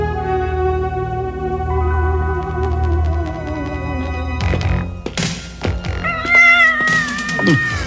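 A cat howls in a cavern in a long, drawn-out wail, followed by sharp thuds and a clatter, then more yowling cries rising and falling, loud with no talking; the howling spooks the character Dagger.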